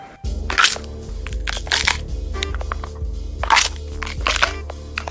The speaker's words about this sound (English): Celery's good, really good for bone cracks. So you break an arm, give it a nice little gives it more impact.